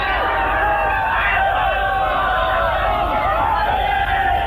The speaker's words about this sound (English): And the crowd are really gone mad.